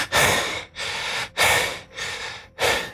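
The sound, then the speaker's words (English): Deep, gasping breaths from a man repeat in a steady rhythm, about five in three seconds, with sharper inhales alternating with softer exhales, fairly loud with no talking. “…'s hands drop from his head, and he's just kind of deep gasping”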